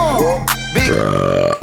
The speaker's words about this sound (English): Five burps that taste like spicy pork from the Korean barbecue